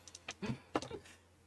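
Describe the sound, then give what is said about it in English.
Dice rattle and clatter across a hard surface in a quick burst of small, sharp clicks, fairly quiet, settling after about a second with no talking. “Oh my God, I got the exact same roll as last time.”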